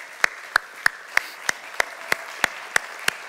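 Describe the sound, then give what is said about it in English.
Hand clapping for the Lord in a steady, even rhythm, about ten sharp claps landing roughly three per second over a soft background hiss, with no talking. “Could we give the Lord a hand clap?”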